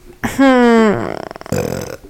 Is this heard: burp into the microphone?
yes